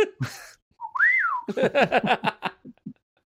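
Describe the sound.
A voice imitates a coffee maker's odd whistling: a rising and falling whistle glide, followed by a quick run of chirpy, warbling beeps and a couple of short, lower blips at the end.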